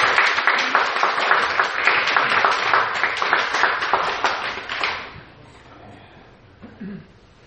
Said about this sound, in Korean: 박수 부탁합니다.